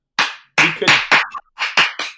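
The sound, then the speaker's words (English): A golf clap: seven unhurried, polite hand claps in a slightly uneven rhythm, each a soft, breathy smack, with no voices in between. “This is golf clap.”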